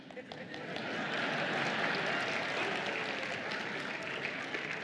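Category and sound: crowd, audience member clapping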